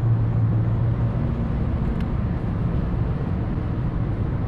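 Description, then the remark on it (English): Steady, loud low rumble of a car in fifth gear cruising at about 65 miles an hour on a highway, with constant road and engine drone filling the whole stretch and no one speaking. “All right. Now I'm moving.”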